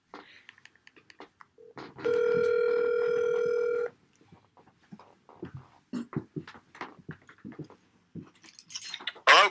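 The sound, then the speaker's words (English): A single long, steady electronic ringback tone from an outgoing phone call sounds loudly for about two seconds, followed by quiet clicks, shuffling and faint muffled voices. “We're just going to call him, and maybe you guys will recognize him right away.”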